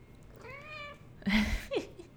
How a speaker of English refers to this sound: Hi, kitty. Well, hello. Got a really nice mama cat here. She's saying hi to me.